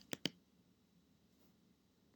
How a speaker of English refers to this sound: I'm going to YouTube. I'm typing in Little League Fight. I'll do Dad.